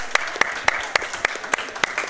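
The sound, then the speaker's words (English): An audience applauding the kindergarten of the Hebrew Academy of Greater Miami in a steady, rhythmic beat, with about eight sharp, loud claps in two seconds over a continuous bed of crowd noise. “I'd like everyone to applaud for the kindergarten.”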